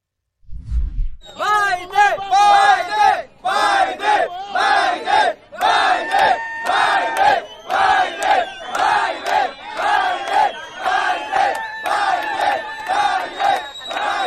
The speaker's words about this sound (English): Tape emerged yesterday of illegal immigrants on their way to the United States. And as they were marching, they were cheering Joe Biden's name.